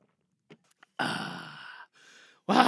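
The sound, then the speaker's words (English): A person sips water: a few faint, quick mouth clicks, then a loud, breathy satisfied exhale, a softer breath, and another sharp exhalation at the end. “That's the best sip. The second sip.”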